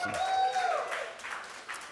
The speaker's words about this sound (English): Feel free to clap. Go ahead. Just get out of your system.